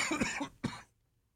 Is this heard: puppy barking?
no